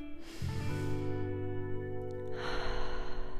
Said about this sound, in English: As you allow your breath to flow freely now, I would like you to just clear your mind. The idea isn't to rid your mind of all thought, but to encourage a smooth flow of breathing in.